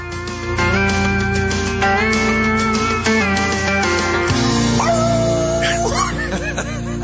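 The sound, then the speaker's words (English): A dog barks and whimpers in short yips and whines over steady music, the whines rising and falling near the end, clear above the backing tune. “Congratulations out there to Trumpet, our latest Best of Show winner, the Bloodhound, from the Westminster Dog Show.”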